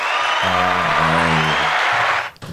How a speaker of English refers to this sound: standing next to the buttons, and he's about to press the applaud buttons